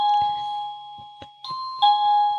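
A loud new wireless electronic doorbell, rung by pushing its button, chimes repeatedly, sustained bright tones stepping between pitches in a ding-dong pattern, insistent, with faint clicks underneath and no talking.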